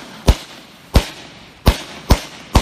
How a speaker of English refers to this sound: Okay, the closest thing to bangers would be fireworks. But then this one, you have the sound that the firework makes, but then it's a more scary sound, and it sounds more like it's like a mini gunshot.